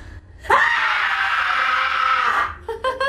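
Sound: woman screaming loudly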